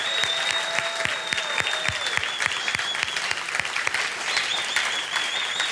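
Steady applause from a crowd, dense rapid clapping holding at an even level for several seconds, with a few sharp individual claps standing out and a faint whistle-like tone running through.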